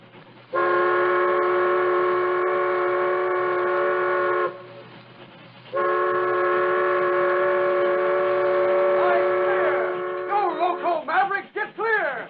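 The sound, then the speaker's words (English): A supply train's whistle sounds two long, loud, steady blasts with a short gap between them, then ends in a wavering, bending tone as the train draws near. No voices. “And if they didn't, they could hear us.”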